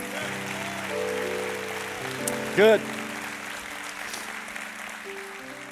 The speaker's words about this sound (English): I know that you put your life on the line, you serve and protect ours, and we just thank God for you. So come on, church family, of all the applause for people, this ought to be the loudest right here. Come on, let's go.